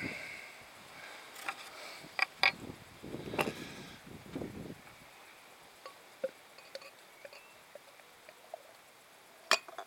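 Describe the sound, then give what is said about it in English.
A plain cap is pried off a bottle of Cross Borders beer with a Dutch bottle opener, outdoors on a windy day: a few sharp metallic clicks, a brief fizzy hiss of escaping gas, then scattered light clinks of glass, fairly quiet, with no talking. “Got my Dutch bottle opener when I was in the Netherlands in 2013, I believe it was.”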